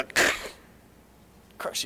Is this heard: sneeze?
yes